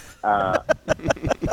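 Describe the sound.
A voice makes a loud, exaggerated throat-clearing sound: a sustained voiced rasp followed by several quick, rhythmic guttural bursts.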